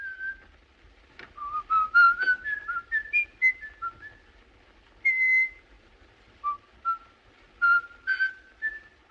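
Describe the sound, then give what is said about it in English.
A man whistles Peer Gynt's "In the Hall of the Mountain King" alone, as the serial killer in the film M, in short, stepping notes, pausing between phrases, the tune rising and falling at a steady, clear volume with no talking. “That's how we know the serial killer is around, because we hear him whistling it.”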